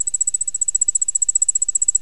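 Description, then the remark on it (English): A nearby ground cricket trills fast and high-pitched, a steady run of rapid pulses repeating evenly throughout, clear with nothing else audible behind it. “And so the ones nearby go really kind of fast and high.”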